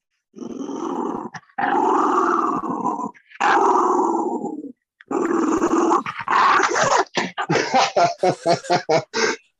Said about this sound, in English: All right, let me see if I can get her to growl a little.